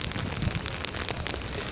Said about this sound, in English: Look forward to that new year as the fireworks echo in the background